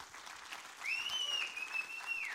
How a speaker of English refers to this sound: Let's applaud the Lord together.